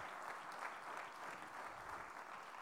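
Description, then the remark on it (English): An audience claps steadily, a dense, continuous wash of many hands with no pauses, loud and even throughout, with no voices rising above it. The clapping is a hand clap given to the Lord. “I'll give the Lord a good hand clap today.”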